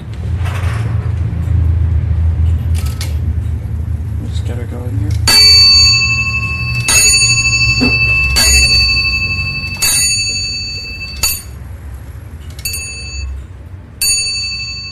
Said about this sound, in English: you will get whatever hour or quarter struck on bells that it happens to be